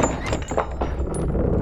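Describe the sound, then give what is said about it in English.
A woman flings a heavy basement door open with a dull thunk and some rattling clatter, followed by a low, steady rumble of background noise. “She puts her finger to her lips and throws the door open.”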